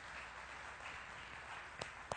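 An audience applauds in a steady, dense wash of clapping, fairly soft throughout, with two sharper single claps popping out near the end. No one speaks.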